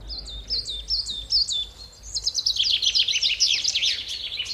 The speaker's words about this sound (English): But if you want to create something very beautiful, then you can only use one sound. It's birds singing.